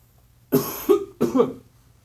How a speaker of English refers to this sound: I'll stop coughing at some point, I promise.